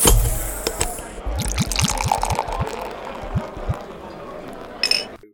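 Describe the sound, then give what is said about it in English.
A pint is poured at halftime with a run of quick, rhythmic glugs, then quieter swallowing and sipping noises, ending with a small clink. “Just to take the edge off my nerves, I'm going to go take a drink. I think it's a perfect time for a halftime pint.”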